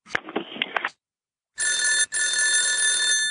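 A brief clatter and handling noise, a moment of silence, then a loud telephone bell rings steadily in two long bursts separated by a very short break.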